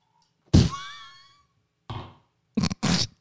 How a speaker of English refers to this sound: Yes, I just poured myself another glass of wine. Did you hear me?